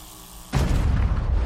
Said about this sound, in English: The explosion was enormous and instantaneous